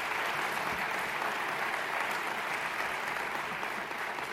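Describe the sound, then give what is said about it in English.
A crowd applauds the event staff steadily, a dense, even patter of many hands clapping at a constant loudness for the whole stretch, with no voices rising above it. “Can you help me give them a round of applause, please?”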